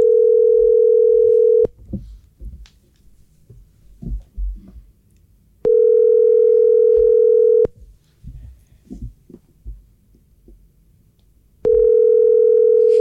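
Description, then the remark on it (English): An outgoing call's ringback tone on a seventh call attempt: three steady, loud electronic trills about two seconds each, spaced by roughly four seconds of near-silence with faint low rustling in between. “Probably ain't going to answer.”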